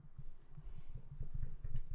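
Someone breathing straight into a microphone, producing a steady, muffled low rumble with irregular soft puffs and a few faint clicks, no voices present.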